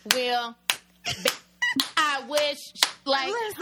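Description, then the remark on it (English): A few sharp hand claps land at uneven intervals between stretches of wordless, tonal vocalizing, each clap a crisp snap standing out against the voice. “Like, it's normally the hand clap.”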